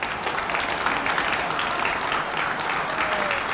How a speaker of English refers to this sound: President Truman emerged through the crowd to cheers and glad tidings